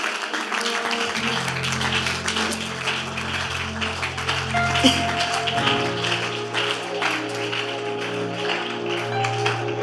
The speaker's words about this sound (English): Clap your hands and begin to pray right now.